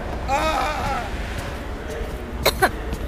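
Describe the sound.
A voice imitates a stubborn donkey, with a strained, wavering bray lasting about a second, then a pause and two sharp, snorting bursts in quick succession.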